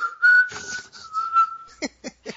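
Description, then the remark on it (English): A person whistles softly, holding one steady, slightly wavering note for under two seconds, followed by three short, breathy puffs of air. No one speaks. “So as you move, I'm going to whistle. As you move. I don't know if that's a good idea. I'll whistle quietly.”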